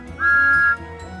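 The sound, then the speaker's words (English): Thomas the engine blows his steam whistle in triumph: one steady, high note for about half a second, then stops, leaving a low rumbling background. “He thanked Yong Bao and the diesel engine and blew his whistle in triumph.”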